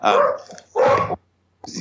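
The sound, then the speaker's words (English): A dog barks three times in quick succession, loud, each bark a harsh burst with short pauses between, the last one slightly clipped. “I hear you there, bro. Dog's out.”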